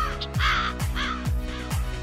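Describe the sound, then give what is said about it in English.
A raven gives four low, hoarse croaks in a steady rhythm about half a second apart, loud, with no other sounds or voices. “They often travel in pairs and communicate through low, croaking sounds.”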